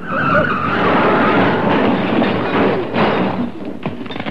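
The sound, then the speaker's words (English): A car with failing brakes skids on bends with a loud, harsh tire squeal and roaring engine, a continuous rush of noise that holds for several seconds before breaking into rougher, choppier scraping at the end. “These brakes aren't working properly. I'll never get round those bends.”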